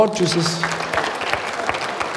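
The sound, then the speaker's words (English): A crowd applauds with dense, steady clapping that holds its level for a couple of seconds, while a brief voice or tone sounds beneath it at the start. “God, please clap for them.”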